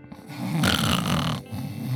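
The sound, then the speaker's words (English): A woman snoring in her sleep while sitting in a car seat at an ocean lookout in the Palisades: one long, loud, rasping snore, swelling in the middle and trailing off into a low rumbling breath, with no talking. “She was snoring.”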